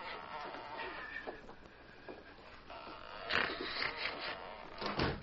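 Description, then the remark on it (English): A cabin door opens and shuts with a creaky, clunking rattle, two bursts of noise a couple of seconds apart over a low, steady background hiss. “He failed to hear the cabin door open and close.”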